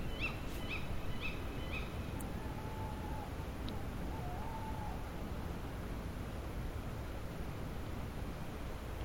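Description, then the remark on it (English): Two tawny owls calling at night in January: a quick series of sharp, high calls from the female, then two low, wavering hoots from the male, over a steady background hiss. “Oh, so what we just heard there were two tawny owls. The female call first, the kind of ooey, ooey, ooey, followed by the male hoot.”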